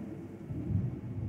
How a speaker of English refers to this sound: You guys saw the lightning and the thunder? Whoa, okay.